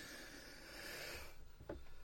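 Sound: sneeze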